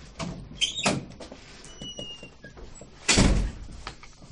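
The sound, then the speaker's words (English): A door swings and shuts with a solid, heavy thunk near the end, preceded by a few softer knocks and rattles of handling. No one speaks. “Yes, we should close the door when we talk about this.”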